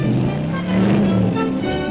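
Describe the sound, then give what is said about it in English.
The engine of a rebuilt, souped-up hot rod car rumbles loudly and steadily, its deep throaty drone rising slightly in pitch before settling back, with no voices over it. “It may be weeks or it may be months, but here it is, the birth, or should we say rebirth, of a hot rod.”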